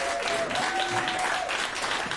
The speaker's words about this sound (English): And friends, a huge round of applause.